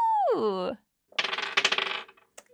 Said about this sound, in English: Roll me again on a D100. Ooh, I get to use my fancy dice.